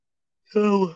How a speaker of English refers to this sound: Oh my God. Sorry, I yawned.